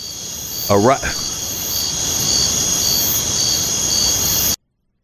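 A steady chorus of crickets chirping continuously at a fairly loud level, with a brief voice-like sound near the start, before cutting off abruptly.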